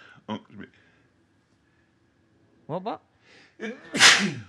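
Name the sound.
sneeze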